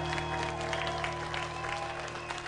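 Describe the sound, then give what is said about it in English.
An audience claps steadily for a few seconds, a dense, continuous patter of many hands at fairly even loudness with a faint steady hum beneath, and no one speaking. “A hand clap for what he's done today.”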